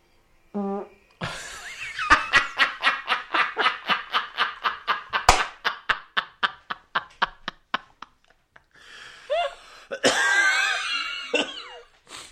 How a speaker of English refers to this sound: Are you going to fart?